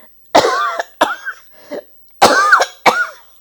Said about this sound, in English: I must cough now.